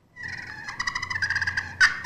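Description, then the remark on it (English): A turkey pot call, played by gently dragging, makes a soft, rapidly trembling purr that rolls for about a second, then ends with one sharp, higher cut. No voices are heard. “Okay, and what was that one where you did like the purr to like the little cut at the end?”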